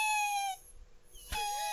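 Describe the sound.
A voice imitates an elk's high-pitched squeak: two thin, whiny tones, the first held steady for about half a second, the second starting sharply and sliding upward.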